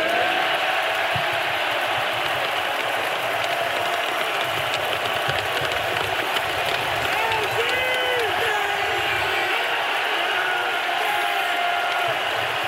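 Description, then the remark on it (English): A packed arena crowd at Fiserv Forum roars without letup, cheering and chanting "MVP" as Giannis Antetokounmpo is given the Finals MVP trophy, a dense, loud wash of voices that holds steady for the whole stretch. “Chanting MVP now in Fiserv Forum.”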